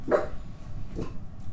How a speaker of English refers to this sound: Oh, dogs are barking. Hang on. Why are they barking? Should we investigate?